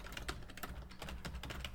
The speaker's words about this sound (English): That's what the typing was, by the way, that I'll also not cut out.